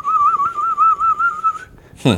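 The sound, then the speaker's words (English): A person whistles an imitation of a chirping bird toy that was put in a tree: one steady, high warbling note with a rapid, even trill, held for about a second and a half, then cut off by a short burst of noise. “There was this little chirpy thing they would put in the tree.”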